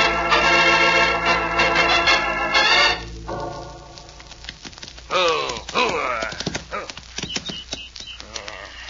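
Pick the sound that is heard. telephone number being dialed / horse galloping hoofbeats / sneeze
horse galloping hoofbeats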